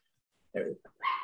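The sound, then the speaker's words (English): A dog barks three times in quick succession, loud, with short sharp yaps following one another after a moment of silence. “that dog is barking incessantly.”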